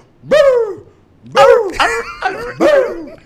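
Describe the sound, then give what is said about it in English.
A person imitates a Kadudura dog barking with about five loud, voiced woofs: one bark, a pause, then a quick run of four. Nothing else is heard. “The only thing Kadudura dogs does. Hulle bluff net. They good at barking.”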